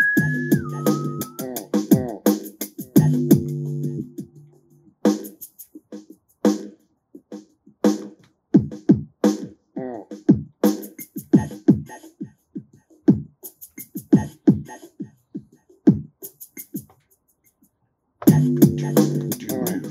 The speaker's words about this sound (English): Listen to that commuter rail. Listen to that empty train go by. Oh, I saw a dude on that train.